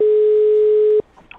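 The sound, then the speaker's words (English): A telephone ringing tone as a Virgin Radio host places a call sounds as a single steady, loud electronic beep lasting about a second, then cuts off abruptly, leaving only faint, quiet background noise. “What I can do, can we call her together?”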